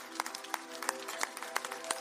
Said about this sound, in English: Could we give the Lord one more hand clap of praise this morning?